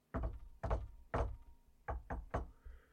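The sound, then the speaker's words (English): Six firm knocks on a front door, fairly loud: three slow, evenly spaced raps, a short pause, then three quicker ones, each a deep, hollow thud with no voices. “There's a knock at the front door.”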